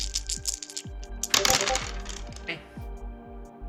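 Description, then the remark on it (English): Dice clatter across a hard tabletop, rolled for a notice check in a game: a burst of quick rattling knocks followed by a few slower bouncing taps as they settle, with a low hum underneath. “dice are not liking Dooley right now”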